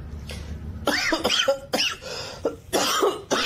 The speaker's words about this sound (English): I can't stop this cough.